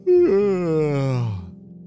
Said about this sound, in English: Some of the crew began to yawn.